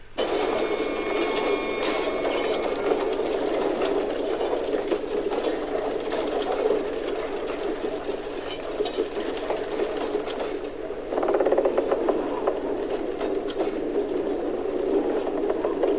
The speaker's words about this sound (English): and how at the moment when he performs this, his first self-conscious, deliberate performance of the Raven King's kind of magic here in this moment, the gears, the huge gears and wheels around them start to turn.